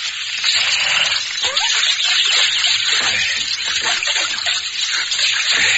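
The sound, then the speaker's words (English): A steady rush of running water pours continuously for several seconds as a canteen is filled, a bright splashing hiss with no voices over it. “We'll water them after we fill our canteen.”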